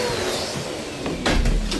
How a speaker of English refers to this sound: Mom, the hoovering, please!